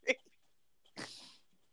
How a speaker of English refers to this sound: Who got little puppies? What are you at? That kid too. I want a pet. That motherfucker don't sound little, though. That motherfucker sound that's a little baby.